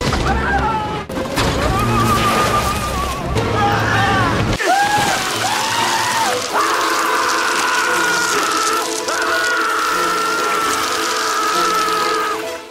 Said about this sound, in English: You know, you hear, I mean, there are some good screams in there. There are.